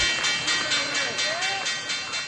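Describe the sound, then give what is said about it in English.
The Wall Street stock exchange opening bell rings in rapid, steady repeated strikes, loud and metallic, over a busy wash of crowd noise and indistinct voices. “Always love that sound. The opening bell.”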